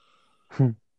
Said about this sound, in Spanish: Sí, Uy, qué buen bostezo. por favor, no bosteces.